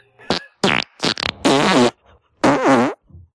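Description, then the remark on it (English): A quick string of four loud, buzzy recorded farts played back to back, short bursts building to a couple of longer, wavering ones, with no talking. “All right, play your farts back to back, babe.”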